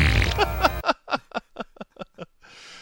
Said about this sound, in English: Because farts are funny. Yeah. And, I mean, the sound effects in this entire sequence are so fucking weird because he farts, and then he's, like, walking over, and the footsteps are ridiculous, and then he sits in his chair, and it squeaks.